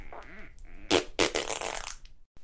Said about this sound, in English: Most people try to make their flatulence and gas with extreme silence, which is fine. But sadly, it's hard to do, and turns out like this.